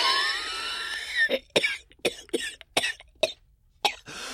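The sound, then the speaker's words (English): A harsh coughing fit: a strained, raspy breath followed by about eight sharp, loud coughs in an uneven rhythm, with brief pauses between them and no talking. “Dude, cover your mouth.”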